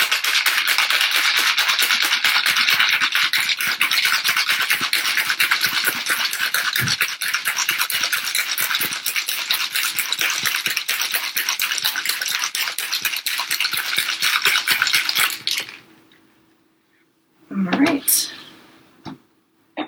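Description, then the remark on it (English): A cocktail shaker holding ice and an egg-white cocktail is rattled hard and steadily for about fifteen seconds to chill and dilute the drink, a loud, dense, rapid clatter, then it stops and a few quieter clinks and knocks follow. “And again, we'll just do a strong shake for another 30 seconds or so.”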